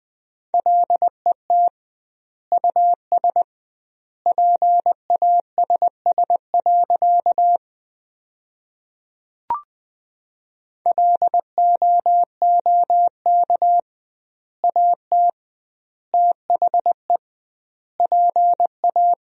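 Morse code practice sentences built from the top 400 words, sent at 20 words per minute with doubled word spacing. A single steady mid-pitched tone keys quick dots and dashes grouped into words with long pauses between them, plus one brief click partway through. No voices.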